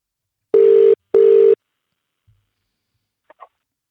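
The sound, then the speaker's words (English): A telephone ringback tone on a call to a man about antibiotics and his cattle sounds a single double ring: two short, steady, buzzy mid-pitched tones in quick succession, followed by near silence and a couple of faint clicks. “I might just give him a call and ask what that's all about.”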